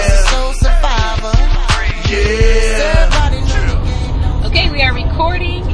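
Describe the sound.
Voices chat and exclaim inside a moving car on a girls' road trip to Madison, Wisconsin, with a steady low road-and-engine rumble droning beneath them throughout.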